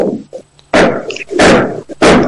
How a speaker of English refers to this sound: You're on the show. What are you hammering there? What's going on there?